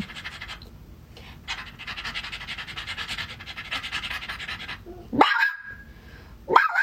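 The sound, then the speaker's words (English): A woman imitates a dog, giving two sharp, yelping barks near the end after several seconds of raspy, scratchy panting-like noise, fairly loud with no talking. “That's her, not the dogs.”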